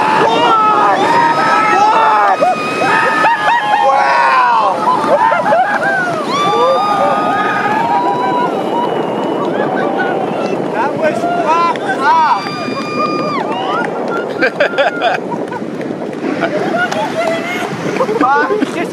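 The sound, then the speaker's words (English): A boat being paddled in across the water during a surfing session, with a steady wash of water and wind noise beneath loud, overlapping chatter from several voices throughout. “It even starts off, I love the narration on the boat. I guess someone's like, "Oh, look at the condor," as you're paddling in.”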